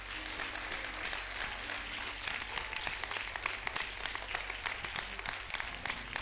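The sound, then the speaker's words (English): A crowd applauds steadily, many hands clapping in a dense, continuous patter with crisp sharp transients, holding at an even, fairly loud level throughout with no voices standing out. “See, some of you won't clap because you don't believe it.”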